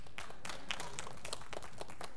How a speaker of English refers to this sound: A smattering of applause across the room.